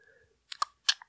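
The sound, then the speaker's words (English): A few sharp, wet tongue clicks, coming in two quick pairs with brief pauses between, otherwise quiet with no talking. “What's that sound called? Clicking my tongue.”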